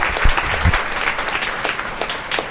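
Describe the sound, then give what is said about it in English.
A crowd applauds the Parizäde staff steadily, with dense overlapping hand claps forming a continuous, fairly loud wash of sound throughout, with a few sharper individual claps standing out near the start. “And if I missed anybody, I apologize, but let's have a round of applause for the Parizäde staff.”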